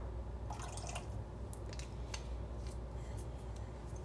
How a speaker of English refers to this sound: From there in that stove top pot, you are going to do 1 teaspoon of your vanilla extract.